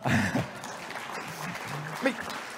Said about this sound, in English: That should have deserved a little clap. That was good.